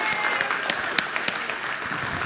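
A crowd applauds steadily for two contestants and a rocket scientist, a dense wash of many hands clapping at moderate volume with a few sharper claps standing out, sustained throughout without any talking.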